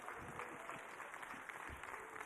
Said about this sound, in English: Anybody ready for the hidden season? Uh-huh. That's four of you clapping.